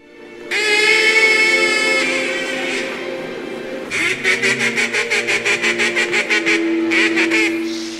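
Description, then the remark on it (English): A duck call whistle blares a long, nasal, buzzy quack, then fires off a rapid series of short, evenly spaced quacks, loud with no one talking. “That fucking quack duck whistle, dude.”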